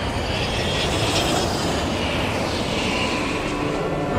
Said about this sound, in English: Lights dimmed, engines revved up, and a few minutes later, Malabar was in the air in its full glory.